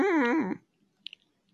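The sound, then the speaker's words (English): A person imitates a puppy's whimper, making a single high, wavering whine that rises and dips for about half a second, followed by quiet with a couple of faint clicks. “And the puppy goes,”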